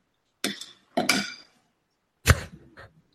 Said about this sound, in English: What did he just like make pasta? What happened here? I think he just slapped a spoon or something.